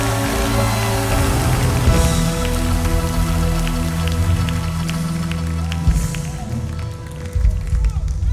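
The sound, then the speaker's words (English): A crowd imitates rainfall with a dense, steady patter of clapping and tapping that rises and swells, sustained throughout over a held musical backing. “Come on, let me hear from some rainmakers in the house.”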